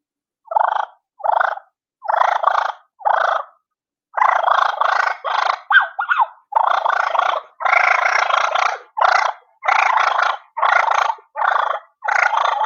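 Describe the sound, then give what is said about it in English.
Soft, rolling turkey fine purrs made on a turkey call: four short bursts, a brief pause, then a quicker run of about a dozen trilling notes, steady in loudness. “But so I'll get some fine purrs for you. And I'll do a little sequence like I would do my wings.”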